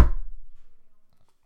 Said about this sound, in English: Goes into the outhouse and slams the door.